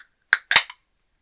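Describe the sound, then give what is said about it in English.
A small 22-centiliter (7.5 fl oz) can of Polar Seltzer original unflavored sparkling water cracked open: one sharp metallic click, then a brief, loud hissing burst of escaping fizz that quickly trails off into silence. “Good crack.”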